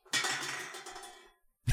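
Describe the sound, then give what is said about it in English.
A bunch of Guru drink cans sitting in front of a desk get knocked over by the pet Frank whipping his tail twice, in a busy burst of metallic clattering and clinking that lasts about a second and fades out, followed by one more sharp knock. “Frank, I just had a bunch of guru cans sitting in front of the desk there. Yeah, and he just like whipped his tail two times.”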